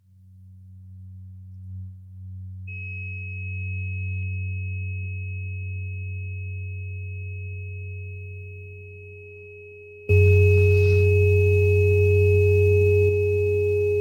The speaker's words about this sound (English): And we're going to play one 417 tone also for change, positive changes.